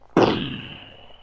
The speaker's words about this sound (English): Ah, it is beautiful. The sound of explosions.